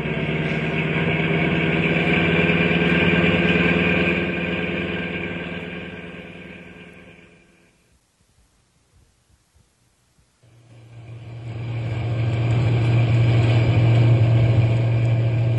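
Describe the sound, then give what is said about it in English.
A heavy truck engine roars loudly and steadily as the truck is driven as fast as it will go, fades away into a brief near-silent gap, then surges back in with a deeper, stronger rumble. No voices are heard. “I'm going as fast as the truck will go.”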